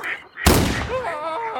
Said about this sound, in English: Holy shit, did you just shoot a man? No, I missed a duck.